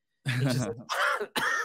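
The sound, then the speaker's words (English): A voice imitates a harsh, wheezy emphysema cough: three strained, raspy bursts in quick succession, loud, with a breathless, rattling quality. “So I always wanted him to have an emphysema cough when he did it.”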